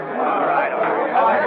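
A dense, steady murmur of many overlapping voices, a crowd milling and chattering round the entrance of a police station on First Street, with no single speaker standing out, holding an even loudness throughout.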